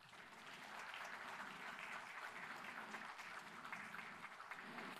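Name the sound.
audience applauding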